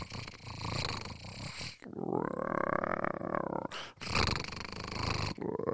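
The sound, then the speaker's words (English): A voice imitates a growling stomach with loud rumbling groans, three drawn-out gurgling bursts separated by brief pauses, with no actual words spoken, standing for a hungry person's stomach growling. “And I realized my stomach was growling and I needed a cheeseburger.”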